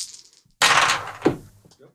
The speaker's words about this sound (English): Try and keep your dice on the table